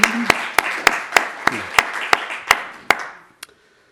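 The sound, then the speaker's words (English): An audience applauds the staff and helpers who supported the evening's proceedings, a dense, steady wash, with one set of sharp, evenly spaced claps standing out on top. It dies away after about three seconds, leaving a last lone clap. “So let's give all of those people a round of applause and bring us together.”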